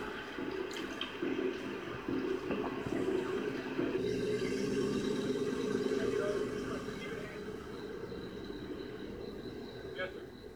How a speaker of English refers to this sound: It's not even a river. It's a fucking... It's a flood. This is a rainy night in Philly. This is the streets in Philly. On a rainy night.